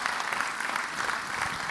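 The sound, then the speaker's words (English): An audience on stage-side gives a big round of applause to thank a worship leader: many hands clap steadily in a dense, continuous round at moderate volume, with no pauses or voices over it. “we should just say thank you, Jet, in the customary manner with a big round of applause”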